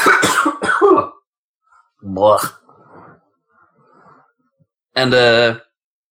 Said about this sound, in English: And I need a cough real bad.